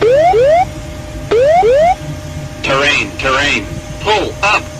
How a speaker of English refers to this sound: So the too low terrain one goes off and they've been getting bombarded by so many different alarms